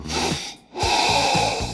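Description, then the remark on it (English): Two loud, drawn-out nasal sniffs of wine in a glass during a wine tasting, separated by a brief pause, with a breathy, hissing texture and no talking. “Go ahead and sniff the wine as loudly as possible.”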